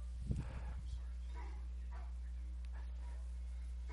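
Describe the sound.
A dog named Otis gives one short, muffled bark near the start, then faint voices murmur in the background over a steady low electrical hum.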